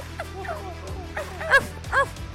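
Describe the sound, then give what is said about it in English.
A person voices a quick run of dog-like woofs, imitating barking, with the last two barks louder and sharper, over a low background hum. “Woof, woof, woof, woof, woof, woof.”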